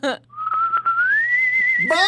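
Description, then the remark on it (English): A person whistles a little goodbye: one long, steady note that slowly slides upward, clear, with a voice briefly at the start and another voice cutting in right at the end. “Can you whistle goodbye to Josh like a little goodbye?”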